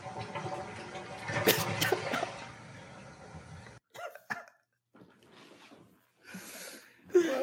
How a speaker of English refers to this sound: Well, the toilet flush at the end is what it's what gets me. Wow. Again. Well, we did this for the ladies, so yep, he's in a stall, he's in a toilet.